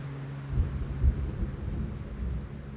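Deep, rolling thunder rumbles through a steady hiss of rain, with two heavier low booms swelling early on before the storm settles into a continuous grumble.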